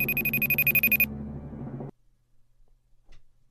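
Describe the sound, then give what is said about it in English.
An Apple FaceTime call ringtone plays clearly, a bright repeating electronic chime with a sustained tone for about two seconds, then cuts off into near silence with a faint knock. “Would that be Apple's FaceTime? That is correct!”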